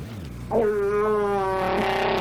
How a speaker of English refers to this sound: Chewy. I'm telling you right now, if I had ever a girlfriend and she farted like that, cut it off. We're getting a divorce.